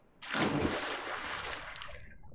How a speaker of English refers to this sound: With the storm past, she grabs her untouched pouch of clams and scuttles out of the sea cave, diving into the crystal-clear waters below. Back to sand, sun, and salt! She hits the surface with a loud splash.